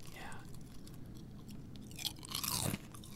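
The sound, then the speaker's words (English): Crunchy chewing of frosted cereal flakes: soft mouth sounds build into a few loud, crackly crunches toward the end, with no one talking. “Oh, I can hear the frostedness. Yeah, and every flake.”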